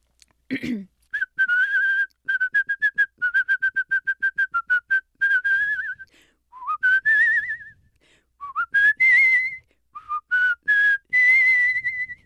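A person whistles the 20th Century Fox film studio fanfare melody: a quick run of repeated staccato notes, then rising, sliding phrases with pauses between them. No talking.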